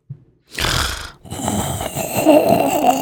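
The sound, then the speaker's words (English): Heavy, loud breathing right up against the microphone: a harsh breath of about half a second, a brief pause, then a longer, rasping breath that runs to the end, with no talking. “But you're breathing in everyone's ear, and you don't know what to do about that either.”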